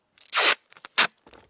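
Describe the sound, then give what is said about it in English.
Small scissors cut down the middle of an A4 sheet of paper: two loud, crisp crunching cuts with quieter clicks and rustles between them, and no one speaking. “So we get an A4 piece of paper. We go right down the middle with it.”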